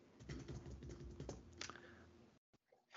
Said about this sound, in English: Clicking off the keyboard.